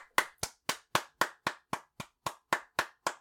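A round of applause from what sounds like a single pair of hands: about a dozen crisp, evenly spaced claps in a steady, brisk rhythm, fairly loud, with no voices.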